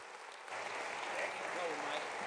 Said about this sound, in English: So if you will stand to your feet and give my friend and your minister today a great round of applause